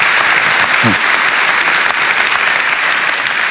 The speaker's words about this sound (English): Amen. Can we just give the Lord a round of applause this morning, man? So cool.